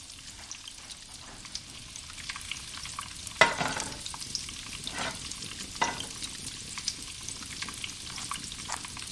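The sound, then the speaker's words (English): Onions sizzle and crackle steadily in a hot pan, with scattered small pops and a few sharper bursts, including one louder snap partway through. No one speaks. “Remember, keep an eye on the onions. Don't let them brown. If it seems like they're cooking too fast, you can add a splash of water, too.”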